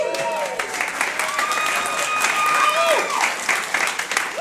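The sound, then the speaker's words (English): An audience in Duluth, Minnesota breaks into steady applause at the mention of Chaperone Records, many hands clapping densely and continuously, with a few whoops and murmured voices rising through the clapping. “But they're clapping anyway, true, which is great.”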